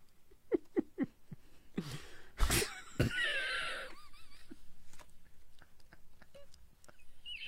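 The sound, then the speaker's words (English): Heavy, wheezing breaths: a few harsh, airy gusts followed by a drawn-out whistling rasp, with small clicks and rustles scattered around them and no talking. “See that breathing thing you do every once in a while?”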